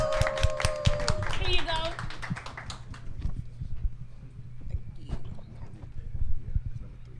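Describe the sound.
An audience claps steadily for several seconds, a dense patter of hand claps with a few high cheers and whoops near the start and voices mixed in, welcoming a woman coming up to the stage to read a group's question.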